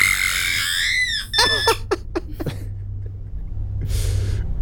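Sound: voice imitating a screech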